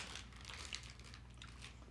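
Quiet chewing of a small, soft orange ball candy with a cream filling in the middle, with a steady run of moist, squishy bites and smacking sounds over two seconds and no one talking.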